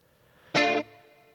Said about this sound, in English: First, you got to double it up. Add a second guitar. And then add some chorus. Now we're in the 80s. Yeah. Put some reverb on it.